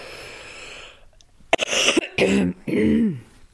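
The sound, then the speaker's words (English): A short fit of harsh coughing: after a quiet moment, three or four loud raspy bursts come in quick succession, the last ones trailing off with a throaty, voiced edge. “I'm going to cough again.”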